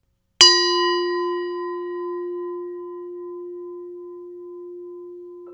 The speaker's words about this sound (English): Let me begin by ringing my Tibetan ringing bowl from Miramar.